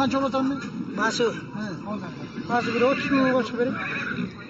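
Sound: horse neighing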